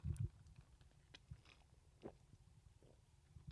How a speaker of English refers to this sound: Just taking a sip of my tea. Damn, that's some good tea.